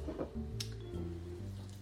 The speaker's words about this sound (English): Then next, I'm going to add my egg and yolk and vanilla. I'm just going to pour it right in.